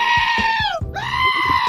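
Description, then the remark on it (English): A sheep bleats loudly, two long wavering cries separated by a brief break, with soft rhythmic thumping underneath. “Ah, the sheep!”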